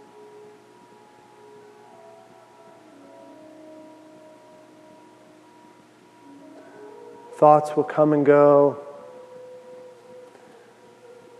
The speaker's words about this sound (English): shift your awareness to your ears. And then focus in on the sound of the flute.